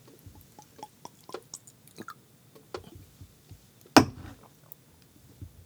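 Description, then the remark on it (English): A drink of tequila being swallowed: small wet mouth clicks and sips, then one loud, sudden gulp partway through, with a few faint smacks after. No one speaks. “The last one we did, you could hear it going down my throat.”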